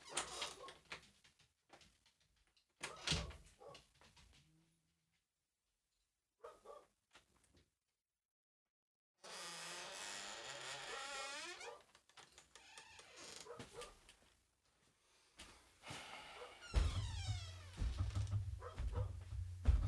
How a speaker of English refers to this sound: And the dog's barking now. And the dogs are barking.